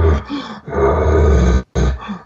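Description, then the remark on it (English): A loud, raspy bull challenge scream blasts out in several harsh bursts, deep and growling with a rough, roaring edge, broken by a brief pause before a final grunting push. “And you hit him with that scream right behind him with that challenge.”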